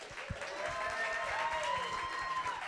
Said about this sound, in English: All right, we're going to applaud now.